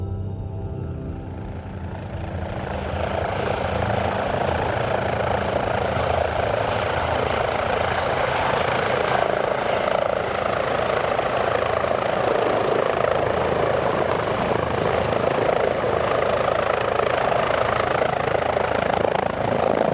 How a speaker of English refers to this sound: We've arrived by helicopter into the crater, the caldera of the Alcedo volcano on Isabella.